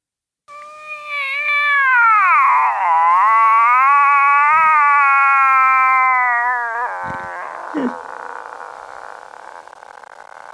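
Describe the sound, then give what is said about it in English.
A voice imitates a cat with one long, wavering, drawn-out meow, nasal and harmonic-rich, lasting several seconds before tapering off with a few small clicks and faint hiss. “How about a cat?”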